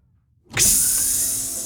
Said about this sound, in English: The door hissed open, and Doug led the way down the platform.